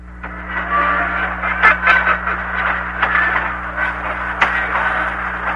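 A steady wash of radio static, hissing and crackling with sharp clicks and bursts over a low electrical hum, as if a receiver is being tuned between stations. No voices.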